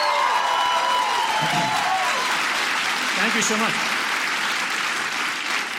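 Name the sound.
audience applause and clapping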